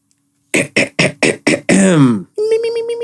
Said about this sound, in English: clears his throat as he gets ready to read the question of the week.